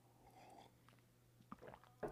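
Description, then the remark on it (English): Someone takes a quiet sip of coffee: soft wet mouth and swallowing noises, ending in a louder slurp, over a faint steady hum with no talking. “All right, I'm going to have a sip of coffee and let's have a prayer.”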